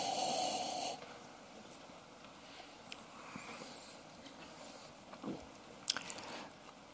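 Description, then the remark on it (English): A breathy sniff of wine lasting about a second, then quiet before a few soft, wet slurping sips of the wine near the end, with no voices. “So the sniff is a very important part of it.”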